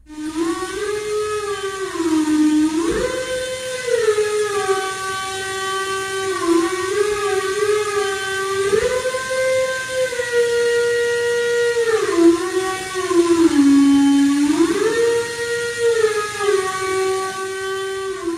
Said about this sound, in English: Okay, this air in this case goes into the whistle. Now, this is a variable pitch whistle. Most whistles were single pitch.